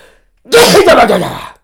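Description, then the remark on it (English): A single loud sneeze bursts out after a brief quiet moment, a harsh explosive blast lasting about a second before cutting off abruptly. “COVID sneezes.”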